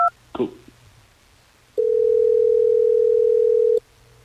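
A telephone ringing tone over the line as hosts of radio station Hot 101.5 place a call: one steady, sustained electronic ring lasting about two seconds, preceded by a couple of brief beeps and a click, with no one talking.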